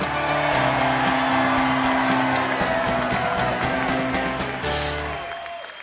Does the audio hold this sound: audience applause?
yes